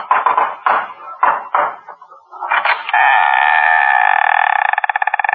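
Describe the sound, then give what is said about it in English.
About four firm knocks on a door in an uneven rhythm, fairly loud, knocking at the door of a boiler room after lunch, followed by a long, steady humming tone that holds to the end. No one speaks. “I arrived after lunch and knocked.”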